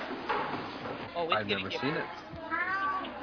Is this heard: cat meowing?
yes